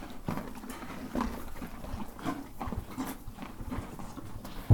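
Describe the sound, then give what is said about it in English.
Horse hooves clip-clop on the floor of a horse barn in an uneven series of soft knocks and shuffles, not loud, with no one speaking. “Okay, yes, we also visited the horse barn, and maybe there were some carrots involved.”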